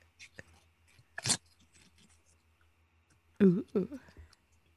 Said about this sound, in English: is eating paper.